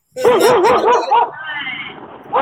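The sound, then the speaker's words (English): A dog barks loudly, a drawn-out, wavering, warbling vocalization that lasts about a second before trailing into a quieter, lower rumble. “He got a big bark.”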